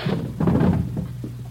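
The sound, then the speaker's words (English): The door of hotel room 345 on the third floor is unlocked and opened: a few dull knocks and rattling clunks of the latch and handle over a low steady hum, with no one speaking. “Here, 345. Open it up.”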